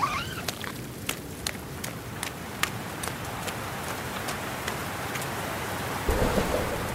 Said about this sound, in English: It's raining. I mean, I knew that, but it's really raining. I can barely keep my eyes open.